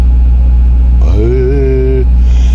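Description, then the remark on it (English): A generator and an air conditioning unit, running at close but not identical speeds, drone together in a loud, steady low hum with a slight throbbing beat. A brief tonal whine rises and holds in the middle before fading. “But those two units run a very sort of close sort of speeds, but not exactly the same. So what you get is a beat, just like the principle of a guitar tuner.”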